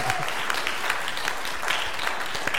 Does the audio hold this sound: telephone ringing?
no